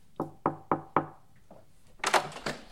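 Four firm, evenly spaced knocks on the door of a government technology lab ring out, then after a short pause comes a brighter clatter, like a latch or the door being opened.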